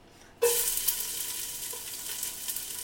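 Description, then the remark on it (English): Four chopped cloves of garlic are added to translucent onions in hot olive oil with a sudden loud sizzle that keeps crackling steadily, a bright hiss continuing to the end with no talking. “You'll hear the sizzle.”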